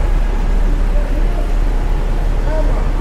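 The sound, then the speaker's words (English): A large tour bus jerks forward bit by bit in dense New York City traffic, its engine a steady, heavy low drone, with a brief high squeal near the end. “It's like, this tour bus is like jerking forward bit by bit.”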